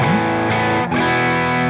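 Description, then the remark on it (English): A loud, crunchy electric guitar played through an overdrive pedal rings out dense and gritty, with a fresh strum about halfway through that sustains thick and buzzy to the end. “Pretty crunchy.”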